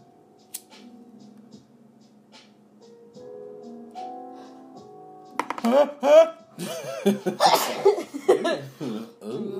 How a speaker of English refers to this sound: Hold on, I have to sneeze. Hold on.